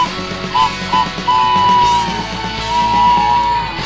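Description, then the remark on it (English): A train whistle gives two quick short toots, then one long, steady blast that holds a single high pitch for a couple of seconds over a noisy background. “All right, I'm putting the train whistle away.”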